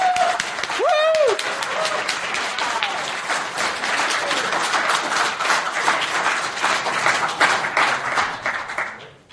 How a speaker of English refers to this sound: Finally, let's get a round of applause for the organizers, for everyone who put this together.